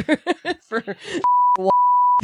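A man talks briefly, then a loud steady censor bleep tone cuts in, pauses for a quick spoken syllable, and sounds again, two flat high beeps covering the speech.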